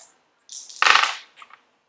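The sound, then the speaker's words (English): Dice clatter onto a hard tabletop, a quick rattle followed by a sharp knock and a short tumbling roll, then a couple of faint settling clicks. Fairly crisp, with no talking. “Those dice are killing you tonight.”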